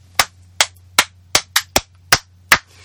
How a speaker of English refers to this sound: That wasn't how you applaud something. That was more like getting ready for a cheerleading practice. But you know what? That's what happens when you don't rehearse these things.